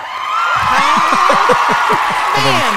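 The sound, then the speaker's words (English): A loud, dense burst of crowd cheering and clapping, with excited whoops and shouting voices rising over a steady wash of applause for a few seconds. “He's got a laugh reel. Oh yeah, all kinds. You applause.”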